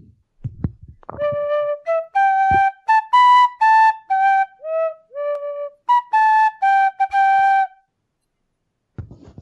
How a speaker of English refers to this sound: Little tin whistle. Whoa, what's this? What key is that in? G. D? Sweet. D. No, no, no. G.